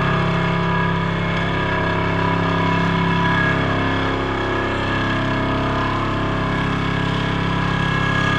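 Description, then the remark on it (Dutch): A steady, loud industrial drone from sheet piles being vibrated into the ground for building a tunnel for a new road, with a constant low rumble and layered mechanical harmonics humming on without pause. “En wie een tunnel wil bouwen moet damwanden intrillen.”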